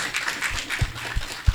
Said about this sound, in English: Clapping harder, I think, will encourage them more.